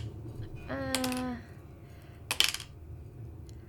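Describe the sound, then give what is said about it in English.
Dice are rolled onto a hard surface for a 'go with your gut' roll, a quick burst of sharp rattling clicks, fairly loud. A voice makes a short, drawn-out tone just before, over a low background hum. “I'm going to say, do a go with your gut roll for me, and I will use the previous knowledge that you've already had to give you some more advice.”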